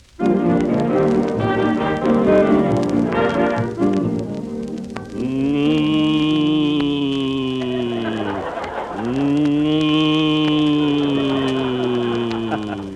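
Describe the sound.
Don Wilson imitates a cow in the Western radio drama Buck Benny Rides Again, letting out two long, loud, drawn-out moos that bend in pitch, following a few seconds of busy background sound.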